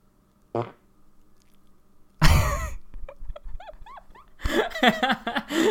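fart

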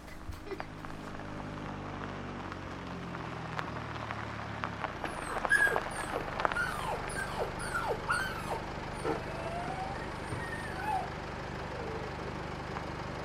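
car driving

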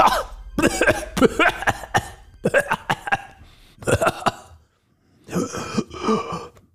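man coughing

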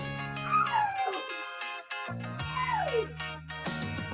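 dog whimpering and howling

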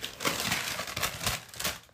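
paper crinkling

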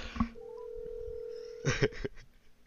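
telephone dialing tones

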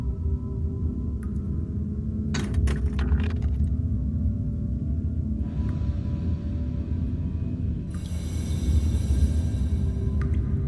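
dice being rolled

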